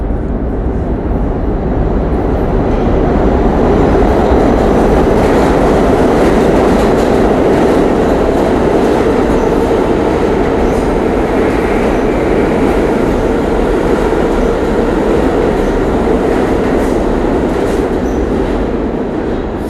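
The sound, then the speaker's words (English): An A subway train rumbles past, a loud, steady roar with rattling wheels and rail noise sustained for the whole stretch, no voices audible. “We've gotten like 3 A's passing by us since we've been here.”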